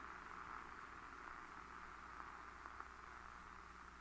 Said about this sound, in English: And static fades away to silence.